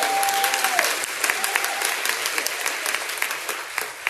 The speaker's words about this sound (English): And thank God. Let's give our kids a big hand clap of praise.